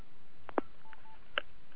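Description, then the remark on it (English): A few short electronic phone keypad beeps sound at irregular intervals as a caller switches phones mid-call, one with a faint lingering tone, over a quiet, slightly hissy line with no talking. “Okay, I just switched phones, so.”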